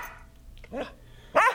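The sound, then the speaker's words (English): A dog barks twice in quick succession, a softer bark followed by a sharper, louder one, while ripping apart a tour bus, against a quiet, slightly hissy background. “So she said I got to take the dog with me. So he's ripping apart the tour bus right now.”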